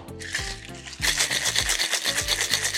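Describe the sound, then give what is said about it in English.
A cocktail shaker full of ice and a spicy Pineapple Express cocktail with 45 ml of vodka is shaken hard, making a fast, steady, rhythmic rattle of icy clacks. It starts after a brief moment and plays over background music with no one talking. “Ice it up and give it a shake.”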